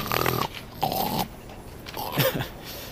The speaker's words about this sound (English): Now, can you work up a good spit? My specialty, boy.